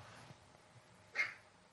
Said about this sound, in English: Do you hear that? Can you hear her barking?